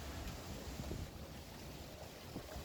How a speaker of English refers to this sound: It shows chest-high water rushing past Mauro's house. There's a red van parked in the driveway. The water is almost up to the windows, and waves are rolling onto the hood like it's a beach.